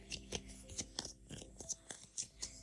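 A deck of cards being shuffled, a quick series of soft, crisp riffling bursts and taps that repeat in an uneven rhythm, fairly quiet overall.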